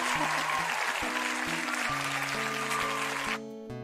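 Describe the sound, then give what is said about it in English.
A crowd claps and cheers in a dense, loud, steady wash over music with sustained low notes, then the applause cuts off near the end, leaving the music playing alone. “And the crowd's song. Already getting wild.”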